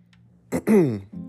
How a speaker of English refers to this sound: You see, I had to clear my throat on that.